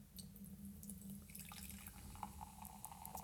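A fizzy drink pours into a glass, a steady liquid stream with a bright, crackling, foamy fizz of bubbles over a low hum, no voices.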